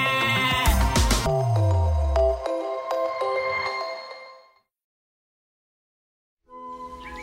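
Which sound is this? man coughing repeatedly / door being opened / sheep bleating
sheep bleating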